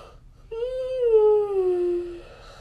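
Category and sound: human body sound, big yawn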